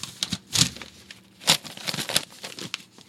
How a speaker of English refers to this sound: Ooh. Oh, geez, knocking stuff over.